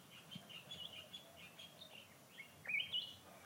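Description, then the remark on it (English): Birds chirp and sing in a steady stream of short, high-pitched calls over a low background hum, with a louder, brighter burst of song near the end. “The voices of animals, and insects, birds.”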